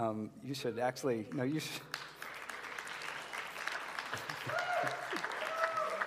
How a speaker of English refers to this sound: You should applaud her, actually.